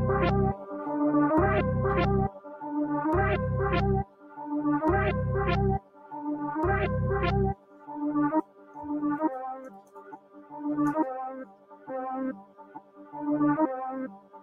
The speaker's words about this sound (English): The Beat Club. I knew it was a drill beat. Man, you knew it?